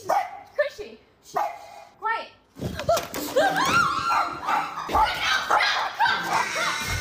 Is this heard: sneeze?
no